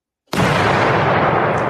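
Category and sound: sound effect, gunshot sound effect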